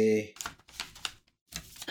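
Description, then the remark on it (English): A brief voice is followed by bursts of small hard clicks and clatter, like dice being shaken and tumbled onto a table, moderately loud in quick irregular clusters. “And where are my dice? There they are, I found them!”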